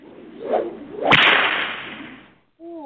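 A whip swishes through the air, then snaps with a single loud, sharp crack that rings out and fades; after a brief silence, a voice begins at the very end.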